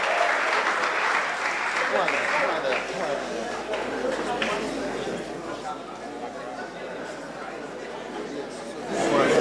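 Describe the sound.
Steady, dense applause from a crowd clapping for the over-70s emeritus members, a continuous wash of many hands clapping at even loudness for several seconds, with murmured voices mixed underneath and a slight swell near the end.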